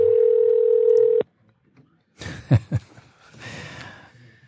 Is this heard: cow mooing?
no